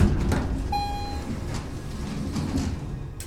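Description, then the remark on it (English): A key card is swiped and a short electronic beep sounds, followed by the low rumbling whoosh of glass tube elevator doors sliding open against a steady mechanical hum, with no one speaking. “And eventually, the doors open back up.”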